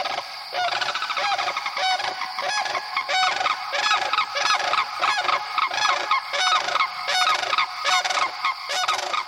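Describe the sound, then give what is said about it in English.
Sandhill crane unison call, given together by a mated male and female pair during the breeding season, in the Okefenokee wet prairies: loud, rattling, guttural bugling notes repeated in rapid, overlapping bursts that continue steadily for the whole stretch, one bird lower and guttural, with no voices present. “That is the unison call of the sandhill crane, given by mated pairs during the breeding season.”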